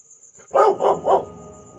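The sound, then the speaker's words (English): Three quick, loud dog barks in an even rhythm, with a faint steady high-pitched hum in the background and no talking. “What's on earth are you barking at?”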